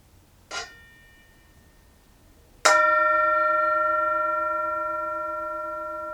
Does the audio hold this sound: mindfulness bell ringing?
yes